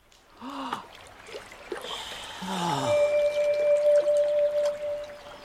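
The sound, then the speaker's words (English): River water splashes and rushes steadily, growing fuller after a few seconds, with a few brief breathy vocal sounds near the start and a thin sustained tone over the later water. “One day, the two of them were fishing in the river.”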